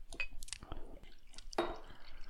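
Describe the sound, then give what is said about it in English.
A drink is poured from a bottle with a lot of sediment in the bottom: a few small drips and splashes at first, then a steadier, fuller stream of liquid gurgling into a glass. “while we're pouring, I did notice that there was a lot of sediment in the bottom of the bottle.”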